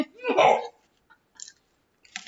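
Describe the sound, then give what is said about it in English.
Chewing of pizza: a loud, wet mouthful at the start, followed by two softer, brief smacking bites after short pauses. No one speaks. “Yeah, I'm chewing on pizza.”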